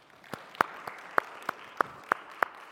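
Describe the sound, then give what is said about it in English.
A round of applause for a group of children at a church service, coming through as sparse, evenly spaced hand claps, about eight sharp slaps in a steady rhythm over a faint background hiss, with no voices. “I think we need to give them a round of applause.”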